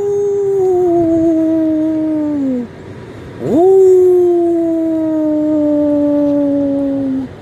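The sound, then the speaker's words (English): A man's voice imitates the deep baying howl of Weezer, an old coonhound that has treed a raccoon in a tall tree: two long, loud, drawn-out calls, each slowly sinking in pitch, the second opening with a quick upward swoop. “He could talk just as good as any human with that deep barking sound.”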